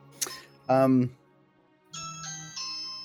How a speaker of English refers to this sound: And a phone call? That's actually the doorbell.